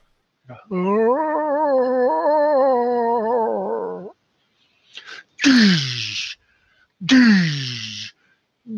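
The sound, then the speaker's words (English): A long, wavering moan lasting about three seconds, coming from the nearest cell about 40 feet away. After a pause come two harsh, breathy bursts that each drop sharply in pitch, like strained groans or sneezes. “As you're doing that, from the closest nearby cell, and by nearby, we're talking 40 feet away, but from the closest cell, you hear a moaning sound.”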